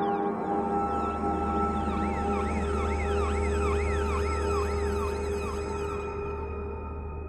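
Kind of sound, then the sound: vehicle, police car sirens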